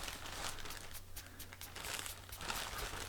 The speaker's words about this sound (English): I don't know if you can hear this on the microphone. Probably not. Let's have two cotton balls rubbing up against each other.